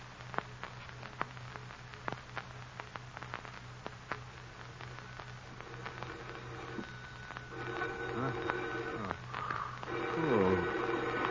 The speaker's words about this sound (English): Phone. Who could be calling at this hour? Now, where's that phone?